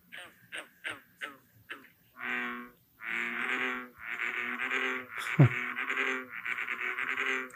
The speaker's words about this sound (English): Well, let's hear what a real bullfrog sounds like.